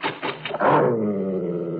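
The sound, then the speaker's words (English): A large dog gives a few quick, gruff barks, then slides into a long, sustained growl that holds steady to the end. No one speaks. “It's only a dog, I think.”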